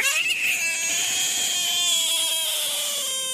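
A frog, picked up by hand, lets out a shrill, sustained distress scream, one continuous wailing cry that holds steady and loud for several seconds, with no other sounds or voices.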